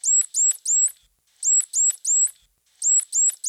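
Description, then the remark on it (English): A dolphin's signature whistle repeats in three quick bursts of three high, upswept whistles, loud, with short pauses between groups and no other sounds. “And don't forget, y'all, the signature call that dolphins use when they want to remind you that the word credits backwards is Stydirk is...”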